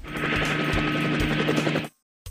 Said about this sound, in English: Helicopter. Helicopter.